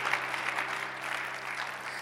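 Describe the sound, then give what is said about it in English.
An audience applauds in a steady, dense wash of clapping that holds at an even level for about two seconds, with no talk over it. “Anybody clapping?”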